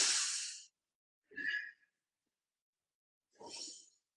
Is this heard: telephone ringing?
no